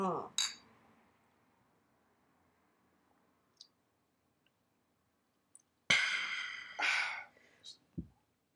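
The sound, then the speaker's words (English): Glasses clink together in a toast, a few bright ringing taps after a quiet pause, mixed with soft breathy sounds and faint voices. “So let's cheers it up. Let's do it. All right. Cheers.”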